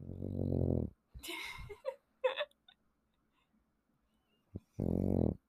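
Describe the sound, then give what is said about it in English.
A sleeping dog named Bubbles snores while napping, with drawn-out nasal rumbles at the start and end and a few breathy snuffles and snorts between them, separated by quiet pauses. “I don't know if you guys could hear that or not, but that was a little bubble snoring break. He's just napping.”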